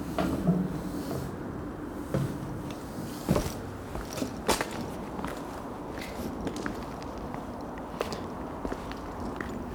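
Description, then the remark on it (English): Steady footsteps on the walk from the subway station to Capital Steel, at an even pace, a soft crunching tread repeating over a low, continuous background hum. A few sharper knocks stand out, and no one speaks. “Long walk from the subway station to Capital Steel.”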